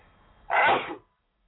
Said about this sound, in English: Excuse me. Ooh, that was a big sneeze.